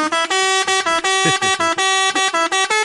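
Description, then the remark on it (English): A truck horn honks in a rapid, rhythmic series of loud, brassy blasts at a steady pitch, about a dozen short bursts in under three seconds. “That's the truck.”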